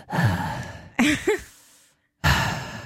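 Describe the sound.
A voice imitates a woman's heavy, intense breathing: loud, rasping breaths in and out, one with a short voiced groan, separated by a brief pause.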